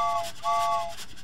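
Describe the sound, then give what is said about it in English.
A steam engine sound effect: two short, bright whistle blasts, one after another, over a steady hiss of steam. No voices are heard. “Which is a great sound effect because that's definitely a steam engine, which magnetic levitation trains don't have.”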